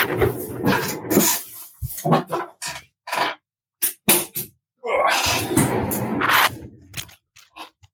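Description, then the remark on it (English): A door being shut: a series of sharp clicks and knocks with short gaps between, then a longer rustling scrape and a few final faint taps, with no talking. “Just 2 seconds, I just got to shut the door.”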